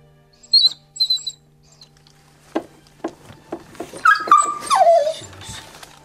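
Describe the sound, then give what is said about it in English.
A newborn puppy and its mother dog during whelping: a few thin, high squeaks, then soft rustling and handling noises as the birth sac is taken off the puppy, and a longer falling whine near the end. Fairly quiet, with no talking. “I'm taking the sack off the puppy and I'm trying to see that it's alive.”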